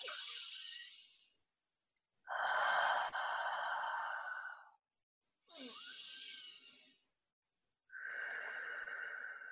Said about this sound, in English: But I can say some simple things to do is, again, come back to the present. Breathe in deeply, full body breaths. Breathing in.